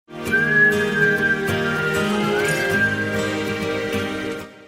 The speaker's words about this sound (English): I like the end, like that whistling.